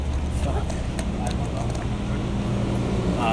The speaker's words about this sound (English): There's so many loud cars.